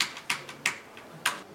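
Quiet, unhurried typing on a computer keyboard: a few crisp key clicks at uneven intervals, with softer taps between them, close by and with no voices.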